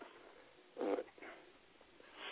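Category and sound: animal, puppy whimpering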